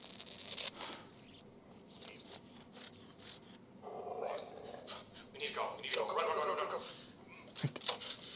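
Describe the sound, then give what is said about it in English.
A dog vocalizes in a couple of drawn-out bursts partway through, sounding like whining barks at moderate volume, over a low, murky background with brief faint sounds around it. “remember there being a dog.”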